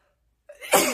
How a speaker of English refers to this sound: Excuse me. Oh, I know I was gonna sneeze. If I can edit it out, maybe you won't even know I did it.